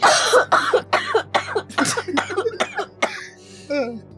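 coughing fit

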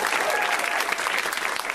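audience applause

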